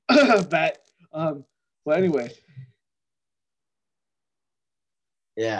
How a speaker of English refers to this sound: I think I just had a cough. That's it. COVID. Round two of COVID.